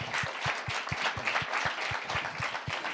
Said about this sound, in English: Okay, let's give these guys another round of applause before we dismiss.